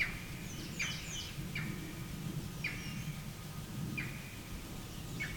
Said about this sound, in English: Turned out to be a green heron.